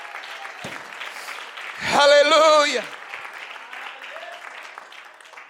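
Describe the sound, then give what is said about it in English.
An audience claps their hands steadily throughout, a dense crackling patter, while a voice calls out loudly in a drawn-out, sung exclamation midway through. “Come on, why don't you clap your hands if you believe that?”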